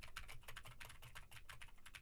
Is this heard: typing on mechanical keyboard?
yes